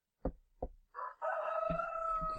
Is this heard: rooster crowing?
yes